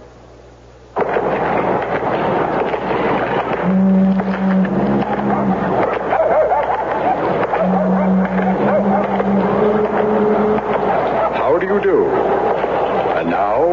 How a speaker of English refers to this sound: I don't know. My car seems to stall all the time.